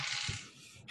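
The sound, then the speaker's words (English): A brief rattling clatter of two dice tumbling across a hard surface, loudest at the start and fading out, with a sharp knock right at the end. “Got two new dice. Strength is an 80, so a hard is 40, and let's roll it.”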